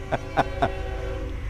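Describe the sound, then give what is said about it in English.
A train rumbles past, a steady low roar with three quick, evenly spaced loud clanking bursts right at the start, then a continuous rolling drone. “I'm going to wait till this passes. This is our train.”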